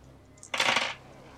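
A brief clatter of dice, an action die and challenge dice, rattling and tumbling across a hard tabletop in a game roll, a quick burst of clicks lasting under half a second, then quiet.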